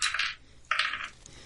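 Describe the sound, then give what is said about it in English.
Dice clatter across a hard surface in two quick bursts as they are rolled for a perception check in a game: a short rattling tumble, a brief pause, then another, fairly crisp with no voices. “Turns out you need dice for this game.”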